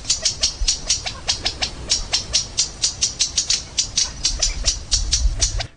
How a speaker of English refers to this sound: And a covey of quails. California state bird.